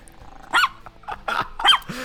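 A dog lets out several sharp, loud barks in quick succession with a rough growling edge, with short pauses between bursts.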